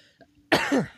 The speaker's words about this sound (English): God, I'm gonna have to edit out all my coughs. Yeah, no, I coughed a few times too.